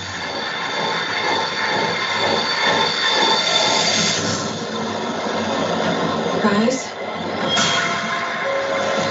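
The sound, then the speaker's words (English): Subway train wheels squeal loudly and continuously over a dense metallic rumble, with sharp high-pitched screeches rising and fading as the train runs by, during a film's subway train sequence. “Shout out to the pinhead mask and the Freddy outfit on the subway. That train sequence is why I'm worried it's gonna be like Halloween Ends or Halloween Kills.”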